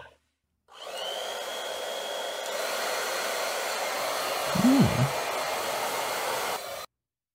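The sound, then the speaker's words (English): A hair dryer whirs to life and runs steadily for about six seconds, a loud airy rush with a faint high whine at first, then cuts off abruptly. “We're going to go to the second hairdryer.”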